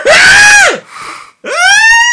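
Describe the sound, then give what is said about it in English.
Two loud, shrill screams from people reacting in disgust to a picture of a bug, each a sustained high-pitched wail that rises and then drops off, separated by a brief, quieter gap; no talking. “Look at all these screams!”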